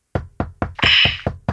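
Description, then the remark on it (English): About seven firm knocks on a door by the speaker's little sister, in a quick, steady rhythm, fairly loud, with a brief hissy rattle over the middle knocks. No one speaks. “Man, I hope this ain't my mom's knocking on the door.”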